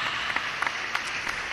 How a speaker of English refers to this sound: And the crowd goes wild.